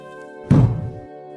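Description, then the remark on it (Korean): A single heavy, low thud as a Buddhist master's wooden staff strikes the floor once during a dharma talk, with a brief booming resonance that fades quickly, set against a faint steady hum. “주장자를 한번 내리치고 말씀하였다.”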